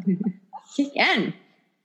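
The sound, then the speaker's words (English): A single sneeze bursts out, a sharp, breathy explosion with a voiced rise and fall, preceded by a brief murmur of voice. “I'm sure she would probably like a study abroad almost like bless you. Zyrtec, hello.”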